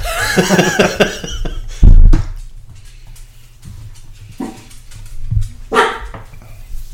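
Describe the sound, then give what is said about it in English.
A dog barks in a few loud, sharp bursts, with a harmonic whine or yip at the start and scattered thumps and room noise between barks. “Goodness, dog. You're not getting enough attention.”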